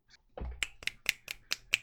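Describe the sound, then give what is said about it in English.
Six crisp finger snaps in appreciation of a haiku, in a quick, steady rhythm, each a sharp bright click, with no one talking over them. “I don't know if you're supposed to snap with that type of poetry, but I'm snapping.”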